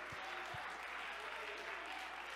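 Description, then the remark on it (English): A church audience claps hands unto the Lord in a steady, dense wash of applause, many hands blending into a continuous roar with a couple of low thumps near the start. “Come on, somebody clap your hands unto the Lord and shout unto God with a voice of triumph.”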